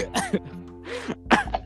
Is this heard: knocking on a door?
no